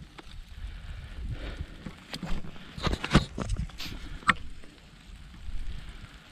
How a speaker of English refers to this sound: Starting to rain. Doesn't look like it'll last long, but I might get kind of wet.